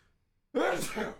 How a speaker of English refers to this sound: Bless you.